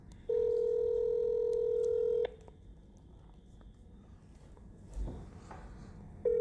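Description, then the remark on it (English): A telephone ringback tone sounds through the line while calling a man's phone number: a steady two-second buzz, a long quiet pause with faint line hiss and a small click, then the tone starting again. “I think he's got a new number. I had 2 on my phone.”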